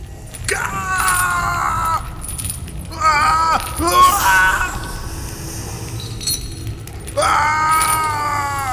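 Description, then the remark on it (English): A man, with many snakes wrapping around his limbs, wails in three long, anguished cries with wavering, strained pitch, each echoing through a chamber over a low, steady rumble with pauses between them. “His wails echo through the chamber.”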